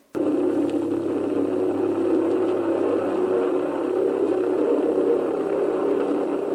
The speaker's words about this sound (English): In flight, the V-1 made a distinctive sound that caused the Allies to nickname it the Buzz Bomb. This is the way it sounded.